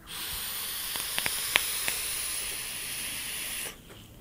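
A steady, airy hiss of a vape coil sizzling, on a Vapor Flask Classic with a 22 mm atomizer just after liquid was dripped onto it, runs for about three and a half seconds, dotted with a few sharp crackling pops, then cuts off abruptly.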